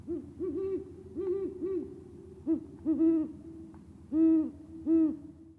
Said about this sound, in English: Until the water became too cold, my end-of-day ritual was to go for a swim near their favorite trees, wait for the owls to wake up, and call to each other.